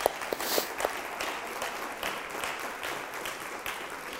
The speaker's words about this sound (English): Let's give him a little round of applause.